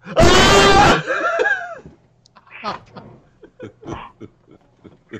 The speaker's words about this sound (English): Stop screaming.